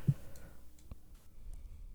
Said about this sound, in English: roll some dice. I'm just going to roll them real quick here.